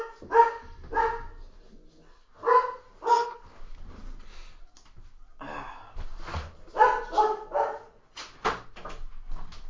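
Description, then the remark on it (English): A dog barks repeatedly in short clusters of two or three sharp barks, with brief pauses and some quieter shuffling sounds in between. “Close the door so the dog stops barking.”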